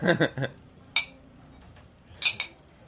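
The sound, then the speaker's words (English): Glasses clink together in a toast: a bright, ringing tap, then a quick double clink a moment later, with a brief burst of murmured voices at the start. “Do you have a toast? To getting drunk all summer and...”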